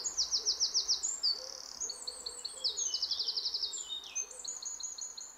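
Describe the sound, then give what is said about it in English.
Bright, high-pitched birdsong with rapid trilled bursts and repeated chirping phrases, overlapping as if several birds sing at once, clear over a soft background hush. “The songs of birds (even mp3s of them) are good for our nerves”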